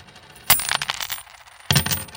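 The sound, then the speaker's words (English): Coins are tossed to a boy and hit a hard floor twice, each burst a bright metallic clatter and jingle as they scatter and settle, fairly loud, with no voices. “Let's see if you can dance for these coins, boy. Here, catch.”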